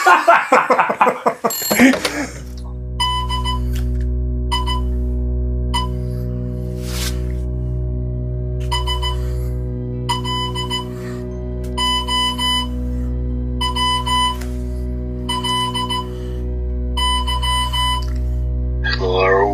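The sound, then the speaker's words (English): A telephone rings in a steady series of bright, buzzy electronic bursts repeating at even intervals over a low continuous hum, with a voice speaking briefly just before the ringing starts. “Can you answer the phone? Stop it ringing.”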